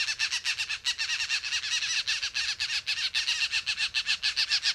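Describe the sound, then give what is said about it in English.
A pair of green jays give a rapid, continuous series of harsh, raspy calls, loud, repeating in quick pulses with no pause throughout and no one speaking, near a parking lot. “As we walk back to the parking lot, we come across a pair of green jays, giving their typical harsh outbursts.”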